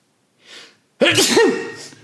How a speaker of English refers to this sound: I'm going to sneeze.